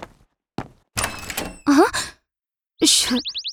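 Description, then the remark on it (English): A few dull thuds against a door, mixed with scraping and sweeping sound effects, ending in a quick run of repeated high chirps. No one speaks. Sheriff Labrador is knocking on Stray Cat's door. “Meanwhile, someone was knocking on her door.”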